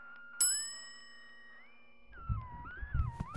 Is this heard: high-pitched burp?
no